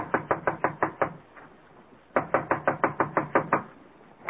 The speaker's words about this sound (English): This looks like Connie's apartment. I'll knock on the door.